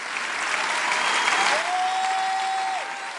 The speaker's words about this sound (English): Stop clapping.